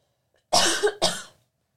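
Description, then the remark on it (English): A woman gives two harsh, forceful coughs in quick succession, fairly loud, with a brief gap between them and silence on either side. “You just ruined the podcast coughing.”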